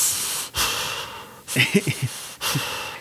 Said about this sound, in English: can you hear yourself breathing? Because it sounds like you're putting your breath through a subwoofer out here.